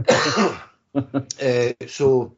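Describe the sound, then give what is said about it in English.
A person clears their throat and coughs: a harsh, raspy burst followed by several short, voiced hacks in quick succession, fairly loud. “So, excuse me, I'm going to have a coughing fit.”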